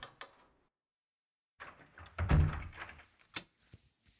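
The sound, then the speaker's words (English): After a brief quiet pause, a door is pushed shut with a sliding rumble and a solid low thud as a visitor comes in, followed by a few faint clicks and rattles. “Maybe I should come on in and we'll get this door closed.”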